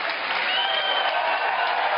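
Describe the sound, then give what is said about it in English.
A crowd bursts into sustained, dense applause as a vote in a poll, many hands clapping at once in a steady, loud wash of noise that holds without pause for the whole stretch. “How many think they should go through a process that maybe give them a chance? Clap. We got to hear you.”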